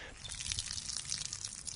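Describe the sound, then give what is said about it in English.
A thin stream of water dribbles from a hole in a cup and spatters onto a hard floor, a steady, soft trickling texture with faint irregular drips, fairly quiet, with no one speaking. “It just sort of dribbled onto the floor,”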